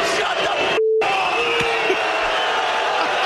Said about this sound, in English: Before that, they were whistling loudly. Then they're all like throwing tomatoes at him. After that, it's craziness how much they start yelling at the guy.